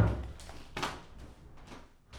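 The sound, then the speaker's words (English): Knocking on a door, a series of about five dull, fairly soft thumps at uneven intervals, with no voices. “Damn, they are knocking.”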